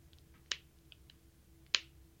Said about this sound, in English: Did you hear that? That sounds like you're slapping your thigh. That was my bone. That's just my ankle bone. It cracks on demand.